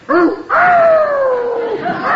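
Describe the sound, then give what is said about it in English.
A loud animal commotion of a dog chasing a cat: a short yelp, then a long wailing yowl whose pitch slowly slides downward, with no talking. “I tied the dog up outside. I didn't want him running around chasing your cat, Peavey.”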